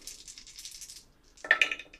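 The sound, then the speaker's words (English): Small dice are picked up and clatter and rattle in a hand for about a second, then a short pause before a louder burst of sharp clicking and tumbling as they are rolled for a game character's wisdom score. No one speaks. “Wisdom coming right up once I pick these dice up.”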